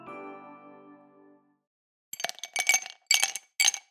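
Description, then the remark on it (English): A steady ringing tone fades out, then after a pause ice cubes are dropped into a glass, clattering in four quick, bright bursts of clinking, fairly loud. “It was ice being dropped into a glass.”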